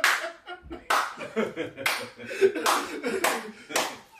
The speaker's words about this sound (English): But give him a slow clap, son.